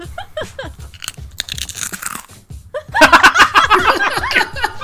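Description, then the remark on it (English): Crisp crunching of Fritos corn chips being chewed, scattered at first and then a dense, louder run of rapid crunches, with soft chuckling and voices mixed underneath. “She's getting her corn chip on. With her Fritos.”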